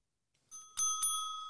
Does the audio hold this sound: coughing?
no